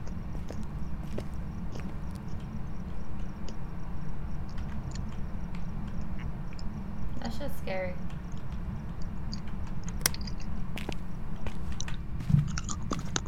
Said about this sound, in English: Scary. I heard that crunching and I thought it was a ghost. Sorry. I'm done with my orange.